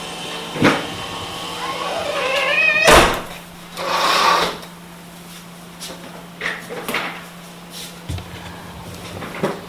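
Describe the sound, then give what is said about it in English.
A door is pushed shut with a scrape and a solid thud, followed by a few softer knocks and rattles over a low steady hum, with no one speaking. “I think I need to close the door as somebody is weed whacking out there.”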